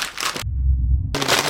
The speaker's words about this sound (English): We're removing all crinkly packages.